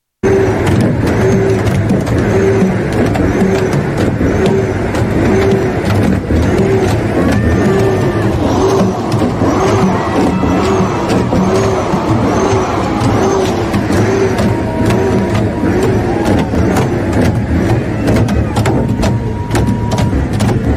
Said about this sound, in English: And, you know, they can ban the horns and they can take away their gas, but the Canadian truckers, they always find a way to get their point across. They'll rev their engines and they'll smash together and clank together their empty gas cans.